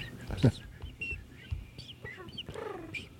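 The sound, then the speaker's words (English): Several short bird chirps and tweets, played as a sound effect for a requested warm-day atmosphere, are scattered across a few seconds and fairly loud. A fuller warbling call comes near the end, over a low background rumble and clatter. “Don't like that bird. If he says it, you bring that bird out. That was too loud. Quieter birds.”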